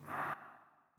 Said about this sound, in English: And as we breathe back out, the belly moves in and the diaphragm moves up. Breathing back in. And breathing back out.